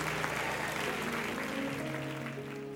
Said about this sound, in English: Come on, let's give God one more round of applause and cheer and celebration.